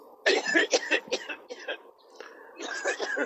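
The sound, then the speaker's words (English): A string of harsh, raspy coughs after smoking, in close succession and loud, breaking into a rough fit with brief pauses before another hacking burst. “No truer coughs have been coughed in.”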